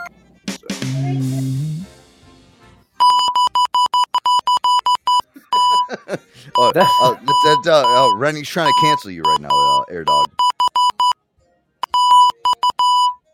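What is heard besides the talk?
morse code beeps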